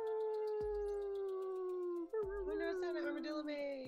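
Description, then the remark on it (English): Several human voices imitate a wolf howl together, long sustained gliding tones that slowly fall in pitch, swelling into a loud wavering chorus, with no other sounds. “So everybody join us in making a wolf howl.”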